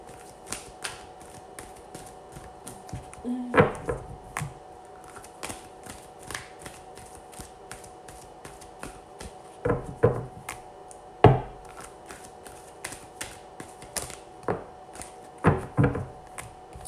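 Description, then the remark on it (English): Crisp tarot card shuffling with repeated riffles and soft flicks, irregular bursts of slapping and rustling, some sharper snaps standing out over a low steady background hum. “So as I shuffle, just go ahead and just breathe by breathing, taking a deep breath in.”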